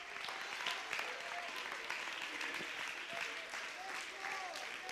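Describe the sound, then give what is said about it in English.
A church audience claps hands steadily and continuously during a sermon, urged on by the preacher: a dense, bright wash of many overlapping claps, with voices calling and shouting through it. “Clap your hands if you believe what I'm preaching.”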